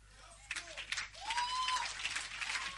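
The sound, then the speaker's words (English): An audience claps steadily for a few seconds, a dense, crackling patter of many hands, with a few voices calling out and cheering over the applause. “Well, you are clapping, but it's not for me.”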